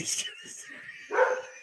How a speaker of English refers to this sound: And the dog's pissed off at me, too.